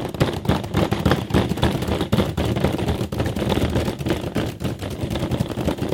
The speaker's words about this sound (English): Now, I don't want you to open your bag. I don't want you to just do anything with it right now. This is going to help us understand our concept. So I want you to make a fist, and I want you to start smashing your graham cracker.